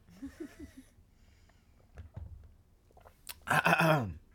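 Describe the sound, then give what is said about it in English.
Someone takes a sip of water: soft low gulps and mouth sounds, a short pause, then a loud breathy exhale after swallowing. No one speaks. “Hold on, let me take the sip of water.”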